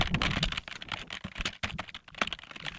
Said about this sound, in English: Dang, you type quick.